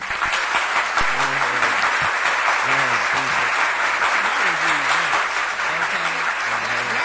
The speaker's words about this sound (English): Round of applause.